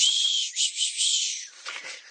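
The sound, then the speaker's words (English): A person whistles, a breathy, airy tone held for about a second and a half before trailing off into scattered hissing breath. No one speaks. “I can't whistle that well.”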